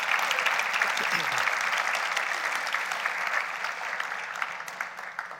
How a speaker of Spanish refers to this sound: Podemos darle un aplauso a nuestro Señor.